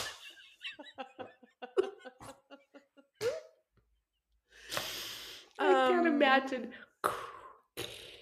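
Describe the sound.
A person imitates Darth Vader's heavy, rasping respirator breathing, with several loud, hoarse inhales and exhales, after a run of short laughing or voiced sounds.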